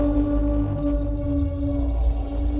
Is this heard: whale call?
yes